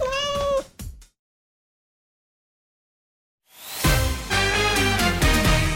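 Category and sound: animal, kittens meowing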